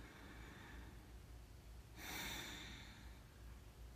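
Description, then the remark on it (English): A single deep breath pushed out through both nostrils after alternate-nostril breathing, a soft, airy rush lasting under a second, surrounded by quiet hush with no talking. “inhale, hold, switch, one more time, exhale, inhale, hold. And release and breathe through both nostrils.”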